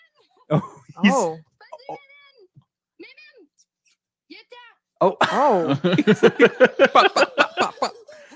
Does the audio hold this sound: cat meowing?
yes